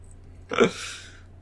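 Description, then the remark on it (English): A person voices one short burp for a robot character named Max, a quick gravelly belch that fades into a breathy exhale. No talking around it. “Suddenly you hear a Max burp and a single black feather comes out of his robot mouth.”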